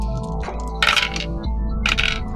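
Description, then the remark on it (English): Dice are rolled on a table for a notice check in a tabletop role-playing game, in two separate bursts, each a quick run of sharp, bright clatters and clicks tumbling to a stop, over a low steady hum. “And you two get through the door and roll me a notice check, both of you.”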